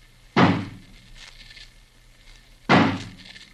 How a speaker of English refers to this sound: smash the door open for us. Stand back, please.